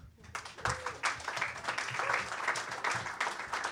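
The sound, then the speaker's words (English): An audience at a reading event bursts into applause for the next reader, many hands clapping in a dense, steady patter that stays loud for a few seconds, with faint voices mixed in beneath it. “Our next reader, I always love this name, so give her a big round of applause.”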